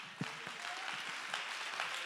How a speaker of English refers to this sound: Let's stand to our feet and clap our hands and give God great praise. Come on, let's praise Him.